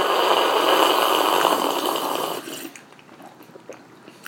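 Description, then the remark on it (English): A loud, airy slurp of French press coffee being tasted, a steady hissing rush of sipped liquid lasting a couple of seconds, then cutting off to near quiet with a few faint clicks. “Again, with the slurping.”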